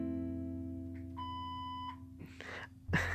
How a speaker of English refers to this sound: Who keeps playing that recorded beep?